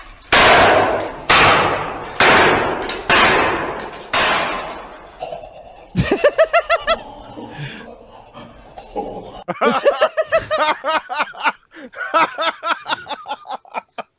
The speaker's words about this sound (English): Is he smashing a laptop? Yeah.